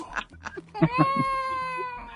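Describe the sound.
A person's voice lets out a long, strained, cat-like wail that holds and wavers for over a second after a few brief vocal bursts, loud, sounding like a dying cat.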